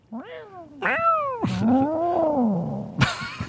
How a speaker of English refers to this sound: Be a nice cat. I don't want a cat with a problem.